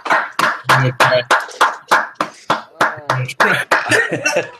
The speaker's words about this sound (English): Clap like a true father. That wasn't a sarcastic clap. That is a father that understands.